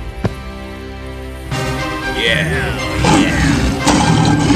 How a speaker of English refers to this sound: The lion started to roar loudly and tried to escape, but the hunters fastened the net.